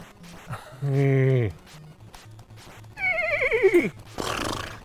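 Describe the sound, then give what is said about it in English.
A Clydesdale horse neighs twice, first a short steady call, then a loud quavering whinny that slides downward, followed by a breathy snort, with faint rhythmic thudding underneath. “The Clydesdale is the heaviest of all horses.”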